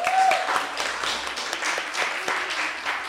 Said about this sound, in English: Please clap for yourselves.